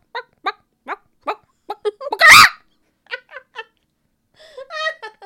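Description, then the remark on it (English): A person imitates a chicken with a quick series of short, clucking bursts, then a loud squawk, followed by a few more clucks and a drawn-out warbling cackle. “Now do a chicken.”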